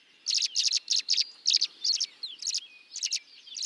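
Bright, warbling songbird notes from small, flashy blue migrant birds, delivered as a quick series of short chirpy bursts with brief gaps, clear, with no voices.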